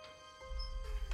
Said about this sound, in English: The door stuck as she tried to close it from behind, creating a small bump. But in the silence rang like a bell.